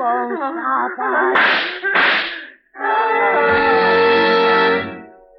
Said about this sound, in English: What was that? I heard a scream. It's downstairs.